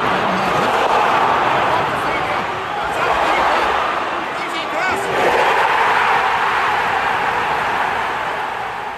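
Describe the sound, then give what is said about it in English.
A large stadium crowd of about 40,000 people at Elland Road, recorded from the stands without commentary, roars, rising into two loud collective shouts of "Go on!", the first near the start and the second midway, over a constant dense wall of crowd noise. “This was audio was captured from the stands, and it captures one of the most vivid, Dave, clear, brilliant examples of a crowd shouting "Go on!" And it happens twice, and it's great.”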